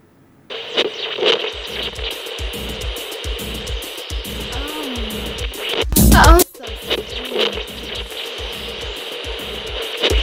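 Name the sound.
radio static interference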